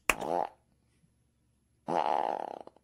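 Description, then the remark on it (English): Two loud, buzzy fart imitations made by a person's voice, a short blast followed by a longer, raspy one after a pause, forceful. “It's just a loud fart, aggressive fart.”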